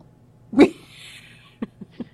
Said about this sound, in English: No, this is the dog suddenly looking like she is going to barf and heading upstairs. Don't let her barf upstairs. That would be very bad.